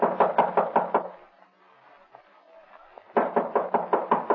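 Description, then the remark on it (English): Two bursts of loud, rapid knocking by police officers on a door bolted from the inside, each a quick series of about six to eight sharp raps, separated by a short quiet pause. “Who's there? Open the door.”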